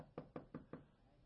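Four quick, evenly spaced knocks on an office door, clear, followed by a short stretch of quiet room tone.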